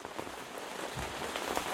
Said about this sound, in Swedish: Är det spöregn eller är det fyrverkerier, tror jag. Det undrar många. Skriv gärna in till oss i 5 i topp. Jag tror kanske att det är spöregn, ja, faktiskt.